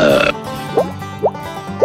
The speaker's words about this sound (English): No, they were all untouched at Thanksgiving, except for the Tide Pod one, and I'm still burping bubbles.